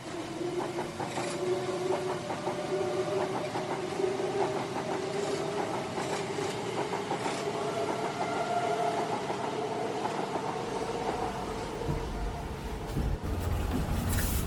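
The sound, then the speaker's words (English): A train running steadily north along the East Coast Main Line in Britain toward Aberdeen: a continuous rumbling drone with a motor hum that slowly climbs in pitch, plus faint clicks and rattles throughout, with no one talking. “But for now, we're travelling another 120 miles further north along the very scenic East Coast Main Line.”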